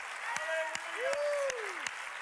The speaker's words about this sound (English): Let's put our hands together. Let's give him a one God, apostolic, Pentecostal hand clap of praise. Hallelujah.